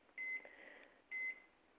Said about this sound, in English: I am setting my timer.